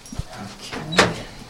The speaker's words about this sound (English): is opening the door, and we're heading inside.